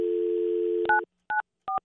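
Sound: telephone dialing tones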